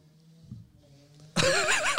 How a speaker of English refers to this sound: For the listeners, he just had a little sniffing salts.